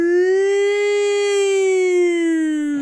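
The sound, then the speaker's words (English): A loud alarm siren wails on its own in one long, steady tone, its pitch swelling slightly upward and then sliding back down as it trails off after about three seconds. “Wait, sound the alarm.”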